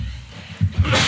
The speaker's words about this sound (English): man, I gotta sneeze.